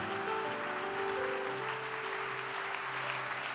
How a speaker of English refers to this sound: I want you to clap your hands for them, and I honor him highly, his wife and kids with us.